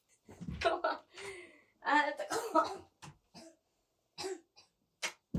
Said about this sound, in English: coughing up a fucking lung. And this has been going on for like 15 minutes now.